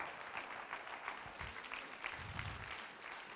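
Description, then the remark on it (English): An audience clapping their hands in a dense, steady burst of applause, many overlapping claps forming a continuous crackling wash with no voices standing out. “Somebody clap your hands if you're going that way. Come on, keep on clapping.”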